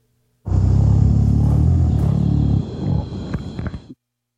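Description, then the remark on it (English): A gorilla gives a steady, low humming tone while eating, loud and buzzing for about two seconds, then breaking into rougher, breathy grunts before stopping abruptly. “One of them was a steady, low-frequency tone that sounds rather like a sigh of contentment or a hum.”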